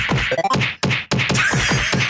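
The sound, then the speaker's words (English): A rapid barrage of punchy, crunchy video game impact hits, kicks and slaps landing in quick succession with brief gaps, loud with no talking, as the player's character kicks the police officers coming for them. “That's me kicking all the cops that come for me.”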